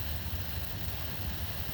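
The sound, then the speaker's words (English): Sudden heavy rain drums steadily on the windshield of a car driving through Palermo toward Calatafimi, a dense, continuous hiss layered over a low, rumbling drone from the moving vehicle. No one speaks. “Big time rain came out of nowhere.”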